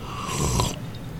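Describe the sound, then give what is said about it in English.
A single airy slurp of hot Ritual Coffee being sipped, lasting about half a second, with no one speaking. “Maybe one more sip of this, and I'll give you my guess.”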